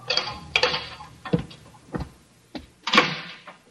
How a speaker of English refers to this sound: Then footsteps sound on the corridor. The door opens.